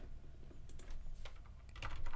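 Quick, uneven keyboard clicks and taps from someone typing at a computer, fairly soft, with a low steady hum underneath and no voices.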